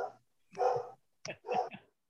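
Puppies yapping: a couple of short, high-pitched barks, then a quick cluster of yips after a brief pause, with no one talking.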